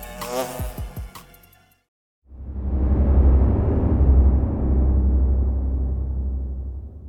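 A dense swarm of bees buzzing, a loud, steady droning hum that fills several seconds, following a brief tonal sting and a moment of silence.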